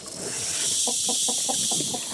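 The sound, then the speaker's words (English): A Madagascar hissing cockroach, a pet insect, hisses steadily as it breathes, a harsh airy breathiness with about six quick rhythmic pulses of a rougher, lower rasp running through it. No one speaks. “A cockroach that makes a great pet is one from Madagascar called the Madagascar hissing cockroach. They hiss when they breathe.”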